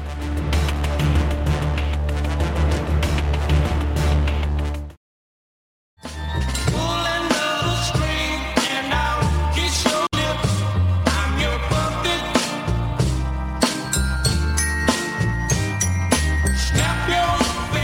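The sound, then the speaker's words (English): A full, loud song plays with a steady beat and dense instrumentation, cuts to a second of silence early on, then resumes just as busily to the end. “I didn't know that song.”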